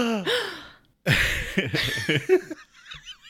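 A shocked gasp, a sudden sharp breathy intake, fairly loud, set among wordless vocal sounds with rising pitch and choppy, laugh-like breaths.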